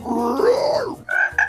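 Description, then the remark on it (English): A voice imitates a frog with a long, drawn-out croak that rises and falls, followed by two short, higher croaks, loud with no other speech. “Here, I'll say it in frog this time.”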